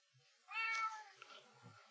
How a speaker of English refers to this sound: First episode of the year, and the cat is just loud as hell.